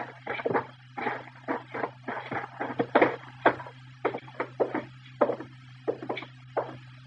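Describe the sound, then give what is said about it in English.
Several men's footsteps thump in quick, uneven succession on a wooden floor as Mr. Dillon and a companion walk right in through a front door, fairly loud over a low steady hum, with no talking. “All right, come on. We'll walk right in the front door.”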